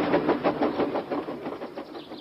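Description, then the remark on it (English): A train rushes through a tunnel with a steady, dense roar and a rapid rhythmic clatter, fairly loud, with no voices. “All he could do was watch the trains rushing through the other tunnel.”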